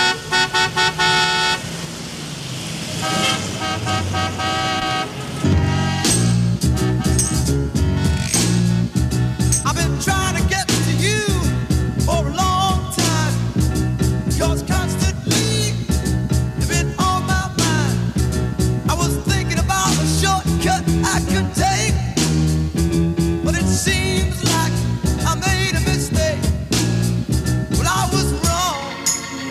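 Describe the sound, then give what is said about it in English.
A 1967 soul song, a number four hit, opens with a burst of blaring, overlapping car horns; after a few seconds a driving beat and full band kick in, loud and continuous. “It was a number four hit in 1967,”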